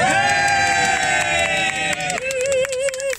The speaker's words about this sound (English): And if everybody can give me a cheer.